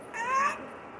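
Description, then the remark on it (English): A kitten not yet two months old growls once while attacking a person: a brief, thin, high-pitched strained cry lasting about half a second, with a slight upward bend in pitch. No one speaks. “she's not even 2 months, ow, 2 months old yet. And she's, this is what she does. Ow, ow, ow. And she's growling.”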